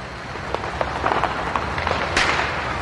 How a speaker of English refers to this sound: Let me just tell you, in Helena, Alabama, they bought fireworks. Yeah. This was just a little what we heard.